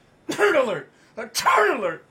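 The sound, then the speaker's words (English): Two sneezes in quick succession, each a short voiced burst lasting about half a second. The second starts with a sharp, noisy onset and is slightly louder. No talking. “Oh, sorry guys, was I sneezing?”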